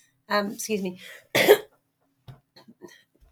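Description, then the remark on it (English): A throaty, voiced rasp followed by one sharp, harsh cough, fairly loud, a remaining cough after a third round of COVID, then near silence with a few faint small sounds. “third COVID, round of COVID, remaining cough.”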